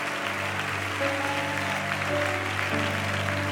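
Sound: audience clapping hands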